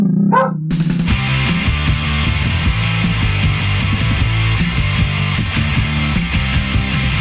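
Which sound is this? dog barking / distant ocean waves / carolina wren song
dog barking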